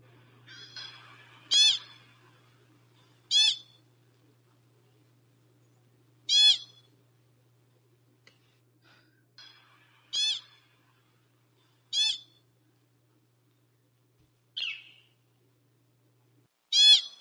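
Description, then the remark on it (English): A series of sharp, high-pitched chirps and shrieks from a small mammal, repeating every couple of seconds with pauses between, clear over a faint low hum. “But yeah, Chris, as you can hear, it's high pitched and there's some chirps and there's more like shrieks.”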